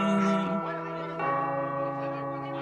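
Two deep, ringing doorbell bongs, like a low gong, struck about a second apart. Each rich tone lingers and hums steadily, fairly loud.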